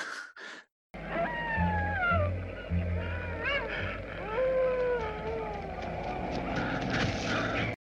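A stock wolf howl sound effect: wolf howls rise and fall in long, overlapping wails, several voices layered into a steady chorus over a low rumble, following two brief clipped sounds at the very start.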